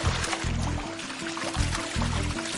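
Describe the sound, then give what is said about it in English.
A basilisk lizard skitters across the surface of water, driving its feet down hard and fast, a rapid, continuous patter of light splashes, with low tonal pulses swelling underneath at a steady rhythm. “This skitter across the surface of the water earns it precious seconds and the nickname Jesus Christ Lizard.”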